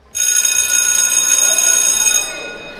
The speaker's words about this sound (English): You know, I never had a bell at my high school, but I've seen so many TV shows and movies that have that exact sound effect in them that I understand in my bones that I'm supposed to pay attention when I hear that.